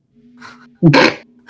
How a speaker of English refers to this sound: Oh, there's a dog here.